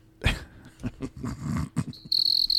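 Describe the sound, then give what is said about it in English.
After a few rough, low growling bursts, a loud, steady high-pitched cricket chirping trill starts up and continues to the end. “Oh. Crickets.”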